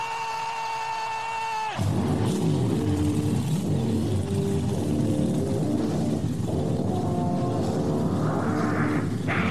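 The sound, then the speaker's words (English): A race car engine fires up abruptly after a brief tonal lead-in, then roars loudly with repeated revs rising and falling, dense throughout. “Race fans, it's time for those most famous words in motorsports. Driver, start your engine!”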